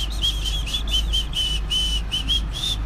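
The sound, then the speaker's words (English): A breathy, hissy semi-whistle pushed through the teeth, as done by people who can't really whistle, repeated in a quick run of about ten short airy chirps, with no talking and a low steady hum underneath. “What about a semi-whistle, which is not what it sounds, really dodgy, but it's like a whistle, but you do it through your teeth.”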